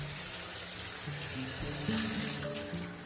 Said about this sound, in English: Right now, I'm standing under the shower head as the water is running down my body, and it feels so good.